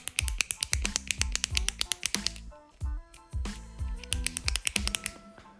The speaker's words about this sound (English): You guys like ASMR? Here's my pen clicking.